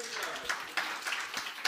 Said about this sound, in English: Would you give the Lord a hand clap of praise for that?